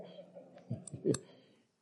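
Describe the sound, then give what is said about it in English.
A key works a lock, producing a short cluster of sharp metallic clicks and a rattle, fairly quiet, with no voices. “We do have the keys.”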